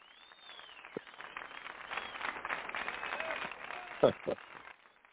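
A recording of applause: a crowd applauds with a dense patter of clapping that swells and holds steady, a whistle rising at the start and a few sharp louder claps standing out near the end.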